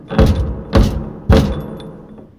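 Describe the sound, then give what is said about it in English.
Three loud, heavy knocks on a door in a steady rhythm, booming, each ringing out briefly before the next, with no voices. “Someone's at the door.”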